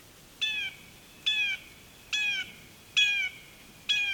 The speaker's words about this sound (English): And for the years I've been recording birdsong for, it's been rare for me to find a place where the call of the blue jay echoes quite like this.